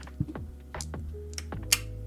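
dice being rolled

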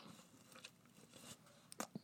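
drinking water

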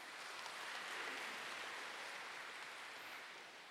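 audience applauding

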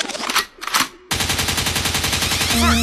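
gunshot sound effect

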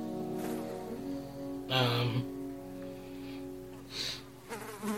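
flies buzzing

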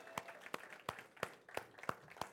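audience applauding

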